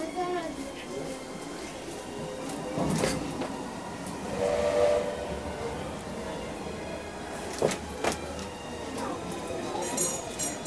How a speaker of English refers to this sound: Train is now departing. Please do not disembark the train.